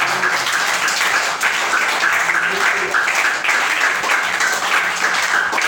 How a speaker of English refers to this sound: can clap better for Jesus. Celebrate Jesus with your hands, please.